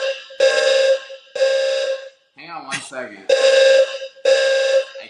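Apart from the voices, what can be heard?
fire alarm going off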